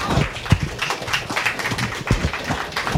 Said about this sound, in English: Please give a big round of applause for Clive Bloom.